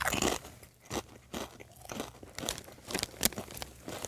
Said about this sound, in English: Apologizing for the loud crunching here, because we got some kettle chips going on. And if you know anything about kettle chips, these are like jawbreakers. They're the crispiest chips out there.